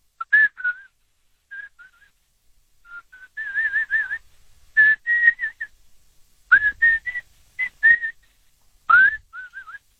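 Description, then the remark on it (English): A person whistles a lively melodic lead riff for a song parody alone, with short bright phrases rising and bending in pitch, separated by brief pauses, fairly loud. “Dude, you got to whistle the lead in there.”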